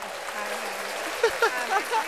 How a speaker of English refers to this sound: Welcome to the pod. Where's the round of applause?